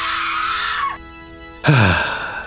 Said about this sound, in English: Don't mind the shrieks. Apparently, my children just love to play with their food.